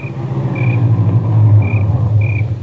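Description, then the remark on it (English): A car engine rumbles low and steady as the vehicle pulls up into the driveway of a house on a ranch, with a few brief high chirps repeating faintly above it. No one speaks. “There was another car in the driveway when we pulled up.”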